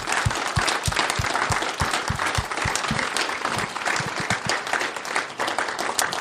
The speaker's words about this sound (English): And I don't know how to honor people more than just a clap, so let's give them a clap. Can we do that?